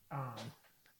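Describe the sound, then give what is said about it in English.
A poodle puppy lets out one short, whiny whimper that rises into a thin yip, fairly clear, followed by a faint quieter squeak; no one speaks. “I have poodles. Puppies. I'm babysitting poodles, everyone.”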